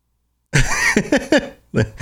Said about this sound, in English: All better. To clear my throat.